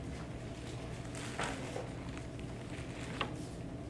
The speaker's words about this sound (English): I'm glad to be in a Bible where you can hear, or be in a Bible, be in a church where you can hear Bible pages turning.